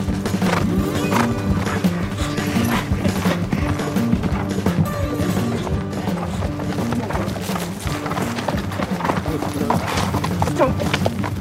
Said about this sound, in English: So all the runners get down into this wash first, come up into this barren desert, and pretty quick, on your right, come the horses.